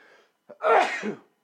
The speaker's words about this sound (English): I think I'm allergic to Mike's hard strawberry lemonade. I think that's what's going on here. I don't know. I can't stop sneezing.